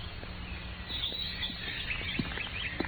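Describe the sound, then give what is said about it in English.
Birds chirp and trill in the open countryside in spring, a scatter of bright, quick calls coming and going over a steady low outdoor hum, with no voices. “The music of the birds and the fresh breath of the spring.”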